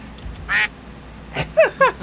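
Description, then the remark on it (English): A duck quack sound effect played from a soundboard by pressing the P key: one loud, clear nasal quack followed after a pause by a quick run of three more, with no voices underneath. “Okay, on this screen, the P is the duck.”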